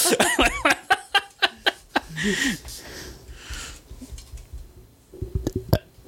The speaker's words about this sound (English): What's even making you burp, you piece of shit? I just had steak. Okay, that would probably do it.